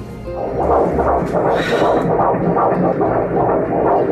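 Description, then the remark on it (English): A baby boy's fetal heartbeat on an ultrasound monitor: fast, steady whooshing pulses, roughly two or three per second, loud over a low, constant hum, with no one talking. “Let's hear his heartbeat.”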